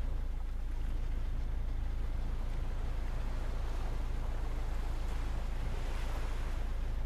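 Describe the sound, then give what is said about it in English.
Water sloshes steadily against a boat's hull in a continuous wash, with a deep wind rumble underneath and no voices. “The waves lapped gently against the hull of the boat.”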